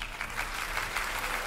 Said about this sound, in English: Please clap.